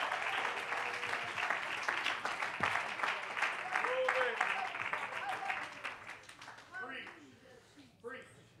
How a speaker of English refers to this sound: I wish you'd throw your hands to heaven and say, reign, Lord. Reign in my spirit. Clap your hands and love him, love him, love him.